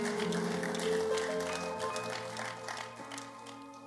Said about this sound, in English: Come on, give him a clap.